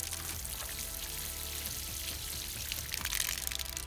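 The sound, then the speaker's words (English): Liquid glugs and splashes steadily out of a water skin onto the ground for about four seconds, fairly loud, with a brief surge of spatter near the end. No voices. “So yes, you pour out, like, the blood from a lion pup onto the ground.”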